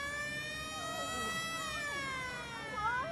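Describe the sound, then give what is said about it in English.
An air raid siren in an animated film sounds the alarm as a nuclear missile heads for the town, wailing in a long, steady, loud tone with a rich buzzy edge, its pitch sagging slowly over a few seconds while faint voices murmur underneath. “Why even bother sounding the alarm?”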